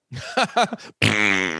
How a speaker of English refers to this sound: And now our next bit is 10 minutes of fart noises.